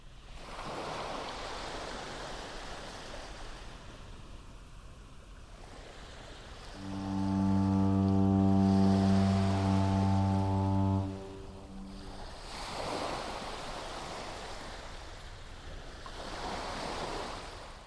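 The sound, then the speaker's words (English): Rough ocean surf and wind roar in broad, rising and falling washes, while a loud, deep foghorn blast sounds for about four seconds midway. No one speaks. “As a large storm approaches, you will cozy up and fall asleep listening to the radio broadcast of the Foghorn Station shipping news.”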